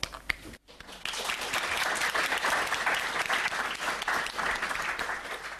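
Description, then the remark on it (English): Sustained applause from a group, many hands clapping in a dense, steady patter that rises after a brief pause near the start and stays loud throughout, at the end of a presentation. “Oh, I can see you're clapping there.”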